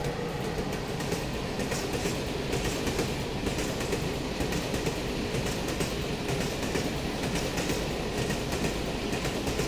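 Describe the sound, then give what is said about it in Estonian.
A passenger train bound for Moscow from Tallinn railway station rolls steadily along the rails, a loud, continuous rumble with a faint rhythmic clickety-clack of wheels over track joints. No one speaks. “Pohmas ja eelmise päeva roimadest veel oimetuna jõudis noormees keskpäevaks Tallinna raudtejaama, kus ta astus Moskva rongile ja põgenes.”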